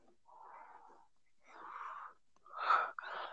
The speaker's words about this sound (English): You're, like, breathing so hard into the mic. What the fuck are you doing, buddy? It's like your nose. It's like, buddy. Are you dying?